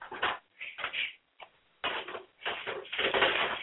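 A dog scratching at a door in irregular bursts of rough scraping, fairly loud, with short pauses between flurries and longer scratching runs toward the end. No one speaks.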